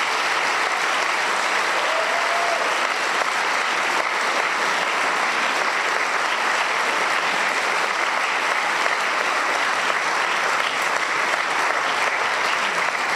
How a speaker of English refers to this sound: So that concludes Wales's first ever debate on the concept of God. Can we have a round of applause for our two speakers?